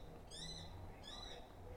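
A bird calls out sharply and repeatedly outdoors, two high, harsh, wavering cries with a brief gap between them, sounding agitated over a low background hum.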